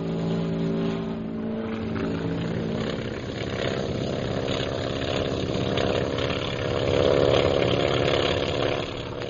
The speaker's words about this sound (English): We'll wait here until the planes are up. Yes, sir. There go the bombers, sir.